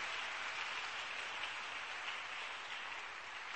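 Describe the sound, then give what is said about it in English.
An audience claps steadily for a group of men of God, a dense wash of many hands applauding at once with no pauses, loud throughout. “Clap your hands for these men of God.”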